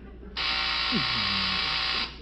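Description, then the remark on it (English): A doorbell buzzer at a judge's house rings out in one long, harsh electric drone, steady and loud for under two seconds before cutting off, with a faint low voice sliding beneath it. “Always hate to push this bell.”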